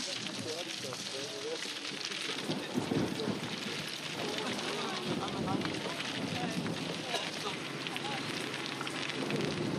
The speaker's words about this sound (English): This rain's going to trash the costumes. Just sort of give it a chance to ease.